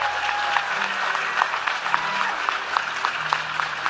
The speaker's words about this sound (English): So for the worship team, give them a hand clap if you would.